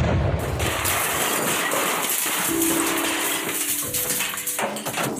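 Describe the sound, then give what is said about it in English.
A loud, sustained crashing roar of metal fills the whole stretch, with a harsh metallic ringing tone rising out of the din midway and lingering to the end. No one speaks. “You hear a boom and a crash of metal.”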